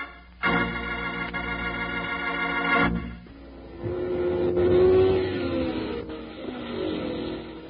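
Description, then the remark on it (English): Loud engines of souped-up hot rod race cars burning up a track rev hard and roar, a sustained high-pitched whine cutting off abruptly, followed by deeper revving that climbs in pitch and surges again. “Exciting it is to go to the hot rod races, watching those fast, souped-up cars burn up the track.”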